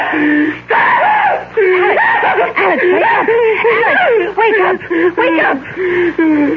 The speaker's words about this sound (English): You were having a nightmare. You screamed and woke me up.